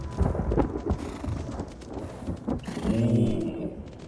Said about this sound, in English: A storm is fast approaching. From the north. From the north? But all storms come from the west.